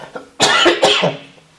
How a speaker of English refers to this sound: Sorry about this cough.